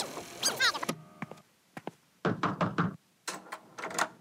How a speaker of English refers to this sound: The address was posted, so I headed on over. And Rita knocked on our door.